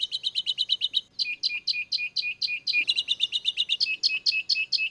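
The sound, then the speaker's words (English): Galapagos finch song in quick, rhythmic bursts of high, buzzy chirped notes, repeated phrase after phrase with a brief pause midway, clear with no talking. “She thought, God, why can't I tell these finches apart?”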